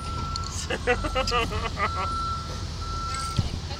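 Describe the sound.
A truck's reversing alarm sounds as a steady high-pitched tone over low engine rumble, with people talking.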